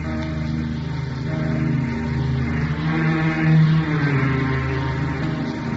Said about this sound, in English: Rain clouds were gathering for a squall, and the motor launch strained through billowing waves toward an island looming on the horizon.